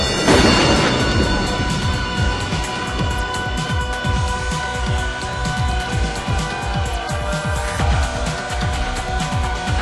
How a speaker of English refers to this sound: Uh-oh, do you hear that whooshing sound? You know what that means. It's time to start the show!